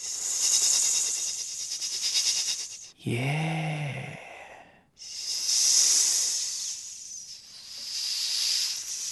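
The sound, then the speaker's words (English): A person imitates a snake with loud, drawn-out hissing, interrupted midway by a short voiced sound before the hiss returns and trails on for several seconds. No words are spoken. “And the boy escaped the snake just like that.”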